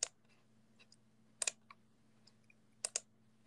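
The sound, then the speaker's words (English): Crisp computer mouse clicks at a steady pace, three sharp double-clicks about a second and a half apart with a few fainter ticks between, over a low electrical hum. “I'm taking it, but I don't want to, like, spam with mouse clicks.”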